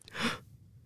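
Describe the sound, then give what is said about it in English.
A short, breathy yawn, a single airy exhale that swells and fades within half a second, followed by quiet room tone. “Stop yawning.”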